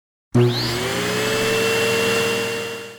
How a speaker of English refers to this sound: Some people have a robot that vacuums their house.